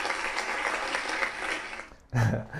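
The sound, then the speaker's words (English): A sustained round of applause for a man's new haircut: steady, dense clapping at moderate loudness that thins out after about two seconds before a man's voice begins speaking. “For the viewers, you know exactly why I'm getting a round of applause right now.”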